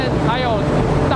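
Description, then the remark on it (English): A large exhaust fan at a wastewater treatment plant roars steadily, pushing deodorized air out. A loud continuous rush of air with a droning mechanical hum and faint wavering tones riding on top. “At the back, there is a big exhaust fan that pushes the air out.”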